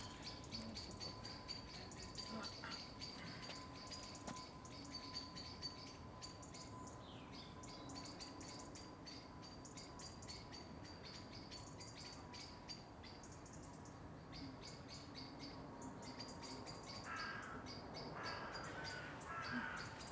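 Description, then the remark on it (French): A steady outdoor chorus of a wide variety of birds chirping, with buzzing insects, in Geneva; repeated high-pitched calls and trills layered over a constant low hum, moderately loud throughout without any talking. “Il y a une grande variété d'oiseaux ici, ça c'est formidable.”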